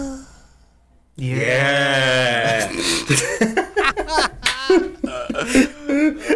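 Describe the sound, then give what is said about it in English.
A voice makes a breathy, wavering ghostly moan imitation, starting with a long sustained tone after a short quiet gap, then breaking into choppy, fluttering airy bursts with varying pitch. “I'm going to give you three more of those little ghosties”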